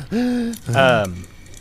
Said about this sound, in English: Hyperventilating. Heavy breathing.